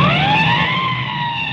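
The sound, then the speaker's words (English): A police siren on a motorcycle with a sidecar wails loudly and continuously at full, its tone sliding slowly downward, with a low engine rumble running beneath it, as police go after a speeding coupe. No one speaks. “I'll give the siren all the way.”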